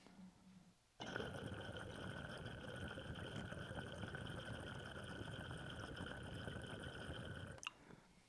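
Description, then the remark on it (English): Steady, loud bubbling and gurgling of water churning through a glass water pipe with a fat foot, a very open intake and transparent mojito-coloured glass, its perc bubbling; a continuous roaring rush lasting several seconds before cutting off abruptly, with no talking. “Man, that thing moves a lot of water.”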